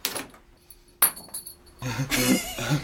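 Two sharp metallic clinks about a second apart, each leaving a brief ringing tail, as a man throws his metal wheelchair brake extender as far as he can and it lands; a voice-like sound follows toward the end.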